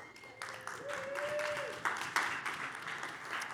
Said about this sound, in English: Everybody clap for her.